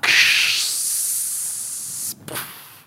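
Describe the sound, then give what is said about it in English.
A voice imitates the hiss of a San Francisco Muni city bus lowering when it stops on top of a steep hill in Bernal Heights: a long, loud breathy hiss that starts strong and holds steady, then cuts off and gives a short second puff. “With the San Francisco Muni system, usually if a bus stops on top of a hill, like a very steep hill, the bus will lower, right? That whole thing you hear, the bus going...”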